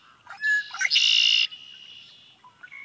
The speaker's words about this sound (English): You'll hear that one in marshy areas full of cattails or tall reeds and grasses. The mnemonic for that bird is conchlerie, the red-winged blackbird.